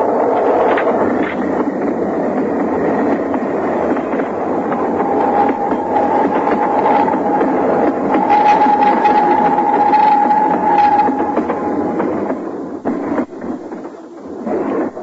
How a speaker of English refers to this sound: Excuse me, sir. I have to see the train go by.